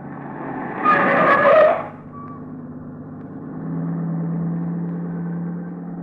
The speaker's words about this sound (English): That car that just passed.